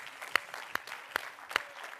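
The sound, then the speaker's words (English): An audience claps hands to Jesus in the morning in a steady rhythm, four sharp, prominent claps standing out at even intervals above a softer, continuous wash of scattered clapping. “Clap your hands this morning to Jesus.”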